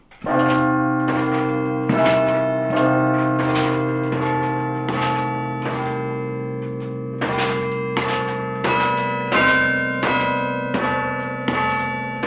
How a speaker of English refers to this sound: The carillon is in a tiny stone room in the bell tower, about four stories up. Directly above are the church's 43 bells, each one connected by a wire to one of those broom handle batons.